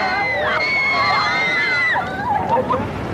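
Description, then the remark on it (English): An excited crowd outside a registrar's office cheers and screams on seeing Paul McCartney arrive for his wedding, held back by police; a dense wall of overlapping high-pitched shrieks and shouts that stays loud throughout, wavering slightly in the last second. “Paul McCartney chose to arrive at the back of the registrar's office, and when the crowd at the front saw him, the police had to hold them back.”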